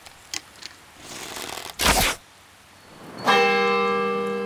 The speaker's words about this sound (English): if people leave during the day, this is the sign. He takes an arrow, just shoots at the bell.